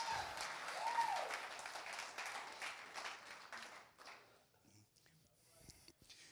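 An audience in church claps hands in a dense, steady burst of applause for about four seconds, with a short whistled cheer early on, before it thins out to a few scattered claps.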